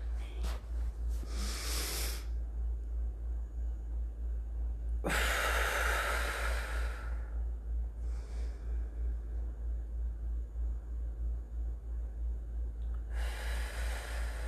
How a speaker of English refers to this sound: Okay. Here we go. Oh, I love my breathing.